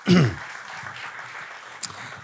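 audience applauding

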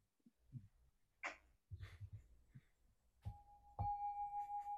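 small bell ringing

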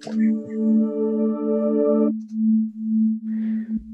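synthesizer sine wave tone

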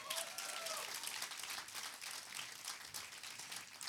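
audience hand clapping

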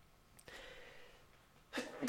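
sneeze

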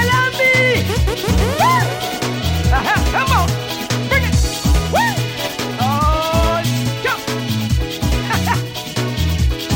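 dog barking

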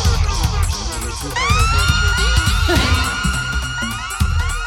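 explosion sound effect

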